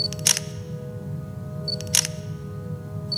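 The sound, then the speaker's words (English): A camera takes two pictures about a second and a half apart. Each sharp shutter click follows a short high focus beep, over a steady low hum and no voices. “I'll take some more pictures so we have evidence that it wasn't us.”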